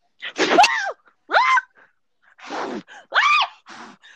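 A loud sneeze: several short, strained vocal bursts and breathy noise over about four seconds, with no talking.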